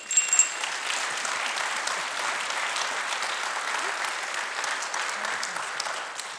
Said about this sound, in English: Let's give a round of applause to your mother.